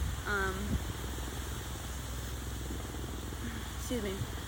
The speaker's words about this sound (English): Sorry if y'all can hear the helicopter.